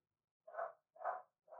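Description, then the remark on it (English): A dog named Bear barks three times in a steady, evenly spaced rhythm, each bark short and rounded, fairly soft, with quiet pauses between and no talking. “Did Bear bark?”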